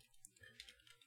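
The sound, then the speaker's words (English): Soft, quiet tapping on a computer keyboard as someone types down a list of favoured title ideas, a handful of light key clicks in an uneven rhythm, with no voices. “Sorry, I'm typing it down because I am keeping a list of the ones that I think we are reacting best to.”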